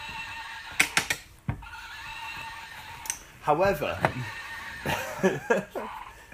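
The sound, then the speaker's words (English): A horse neighing sound effect: a loud, wavering whinny that rises and falls in quick bursts, with a person briefly speaking around it. “Are you sure you didn't ride past on your horse? I think everyone rides horses in Cornwall.”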